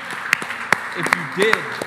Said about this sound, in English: Let's give some people a round of applause today that made a declaration.